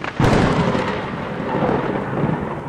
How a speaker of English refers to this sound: And one day, there was a big storm.